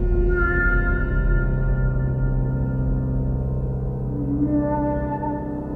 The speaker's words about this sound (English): The soundtrack even has those really eerie, like almost like whale or dolphin underwater sounds.